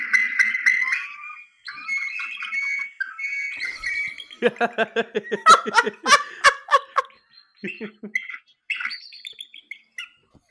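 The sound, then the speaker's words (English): A bald eagle calling: thin, high whistled chirps, then a rapid burst of a dozen stuttering, giggle-like notes, followed by a few more scattered squeaky cries. No one talks. “Okay, so bald eagle sound.”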